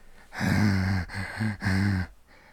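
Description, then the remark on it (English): Exaggerated heavy breathing: three loud, voiced, raspy breaths in quick succession, deliberately panted, with no words spoken. “Heavy breathing.”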